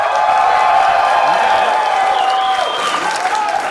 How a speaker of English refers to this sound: This is crowd voted, so we will be going off cheers.